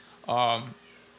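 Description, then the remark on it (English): A single loud, drawn-out cat meow at a door, clear, lasting about half a second before fading into quiet background. “Yeah, there's a cat meowing at the door.”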